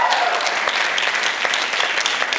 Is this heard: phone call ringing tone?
no